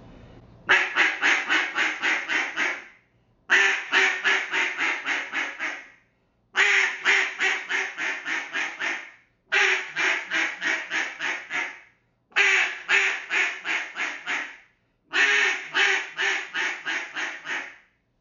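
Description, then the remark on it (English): A raspy, barking cut-down duck call blown in six loud, aggressive bursts, each a rapid string of harsh quacks, separated by short pauses. No talking. “Now I'm going to give you the sound of the cut down and you're going to hear the different barky and more of a raspy sound and kind of more of aggressive with this call.”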